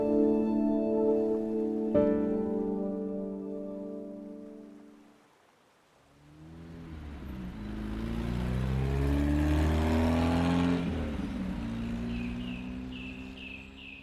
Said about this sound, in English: I want to wake up someday and realize that it's been years since I heard the constant rumble of traffic.